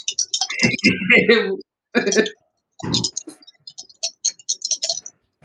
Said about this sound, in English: I'm going to shoot the one that shot me, and since I roll my dice to work out all the bad luck, I'm pretty sure I'll do well.